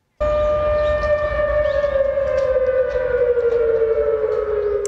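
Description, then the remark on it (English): A loud air raid siren wails steadily in Seoul, South Korea, sounding an alert after a North Korean rocket launch; its tone holds and slowly slides slightly lower, with a low rumbling background and no voices. “This was the moment that the sirens went off in the South Korean capital.”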